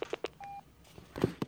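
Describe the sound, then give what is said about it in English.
Quick telephone dialing tones as a phone call is patched through: a few rapid keypad beeps, a short steady tone, then more beeps, fairly quiet with no one speaking. “I'm going to patch the phone through here.”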